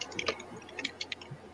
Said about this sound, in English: Hold on. He's typing.